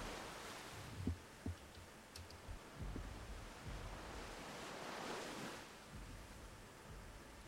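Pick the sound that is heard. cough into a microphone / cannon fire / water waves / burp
water waves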